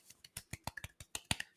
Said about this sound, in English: Golf clap.